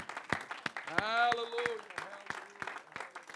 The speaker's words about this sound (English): And you can clap as you're going down sitting. Hallelujah. Clap it to the Lord, everybody. Let's love him.